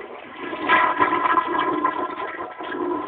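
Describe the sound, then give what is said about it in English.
A toilet flushes with a steady, loud rush of swirling water that swells early and churns on for a few seconds without a break. No voices are heard. “Now, anybody putting a flush of a toilet in their boat line is an automatic.”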